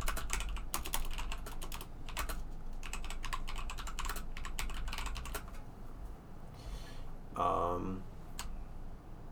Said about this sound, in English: I'm just gonna type this out and we can fix it later. Yeah, don't worry about the typing right now.